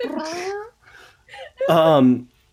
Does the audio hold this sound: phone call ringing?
no